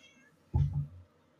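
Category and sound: animal, cat meowing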